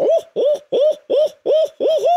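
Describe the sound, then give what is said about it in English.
A person imitates an owl with their voice: six quick, evenly spaced hooting calls, loud, with no talking in between. “Give us your best mouth call, whether it's an owl or a crow.”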